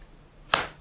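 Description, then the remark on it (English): A single sharp open-hand slap to the face cracks out after a quiet moment, a crisp smacking hit with a brief fading tail and no voices. “Oh, that slap. Looks like it hurts more, the open hand slap.”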